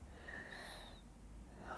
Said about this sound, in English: Right now, the sound that I love is this content breathing, yes, of your little boy. Yeah. If I let it, it would put me to sleep. Right. Right. It's so relaxing, and he's comfortable. He's safe.